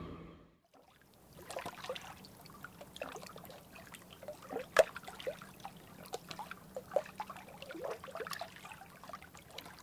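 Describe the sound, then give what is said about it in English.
Gentle river water laps and trickles against a narrow boat in Oxford, nudging it against the bank, in soft, irregular splashes over a low steady hum, with occasional brighter drips and knocks rising briefly above the flow; ducks, a weir and a spring breeze are part of the scene. “But now, on her narrow boat in Oxford and teaching English literature, the sounds are of ducks, the weir, a spring breeze, the gentle lapping of the river nudging the boat against the bank and then back out into the flow.”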